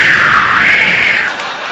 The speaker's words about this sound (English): I guess, are there any good marriages here? Well, there's a wave of applause.